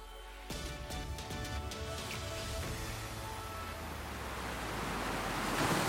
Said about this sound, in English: The wind picked up pretty suddenly. The waves were coming from all directions.